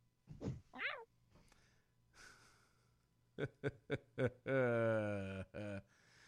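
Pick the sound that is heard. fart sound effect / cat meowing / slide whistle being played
cat meowing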